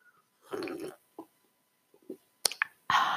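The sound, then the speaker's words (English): A drink is sipped with a brief slurp, followed by small wet mouth clicks and gulps, a sharp click, and a final breathy exhale, all without talking. “Hold on, let me take a sip.”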